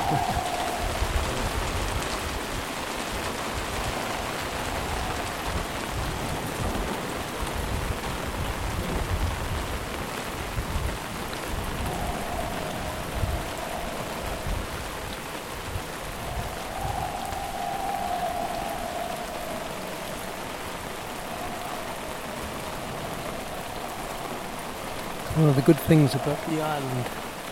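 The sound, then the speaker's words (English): Heavy rain pours steadily throughout during a thunderstorm on an island, a dense continuous hiss and patter, with a brief louder clatter near the end but no clear thunder. “Storming now. Thunderstorm coming over.”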